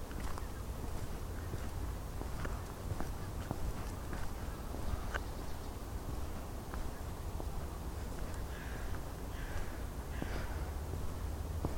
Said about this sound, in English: If you can hear the geese coming in now.